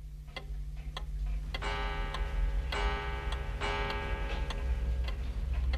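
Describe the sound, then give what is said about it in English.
A pendulum clock ticks steadily at a measured pace, clear, while a sustained ringing metallic tone swells in behind the ticks over a low background hum. “And by lengthening and shortening the bob on the end of this pendulum, they actually got very good time.”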